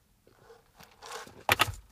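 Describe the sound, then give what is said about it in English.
A soft slurping sip of coffee, followed by a sharp clunk as the cup is set down. No one speaks. “But this time, and I'm going to have a sip of my coffee.”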